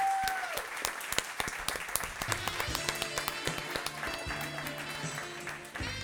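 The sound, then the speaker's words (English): An audience bursts into a steady round of applause for Al Madrigal, dense overlapping claps sustained for several seconds, with a few scattered cheers and hoots mixed in before it begins to taper. “Give it up, everybody. Round of applause.”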